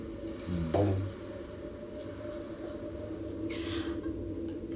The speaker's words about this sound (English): there seems to be like liquid in these cylinders. And it's in that moment that you realize immediately where the bubbling sounds comes from. Because almost like slow boiling water, these bubbles rise through these cylinders.